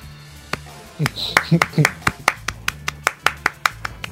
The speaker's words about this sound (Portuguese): Palmas, foi? Palmas.